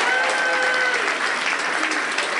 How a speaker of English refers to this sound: how about a round of applause for our guest